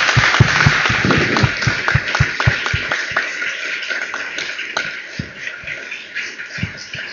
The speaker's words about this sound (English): Listen, that brings to an end a really fantastic contributions from an amazing panel and a really good afternoon. Would you give them all a round of applause? Thank you.